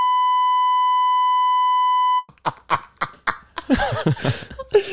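A loud, steady censor beep tone holds for about two seconds, then cuts off abruptly as lively voices and laughter-like bursts take over.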